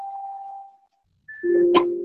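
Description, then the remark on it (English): An incoming-call alert on a phone: a steady electronic tone fades out, then after a short pause a higher beep gives way to a louder, lower buzzing tone with a brief click. “Let me hear this call just came through real quick.”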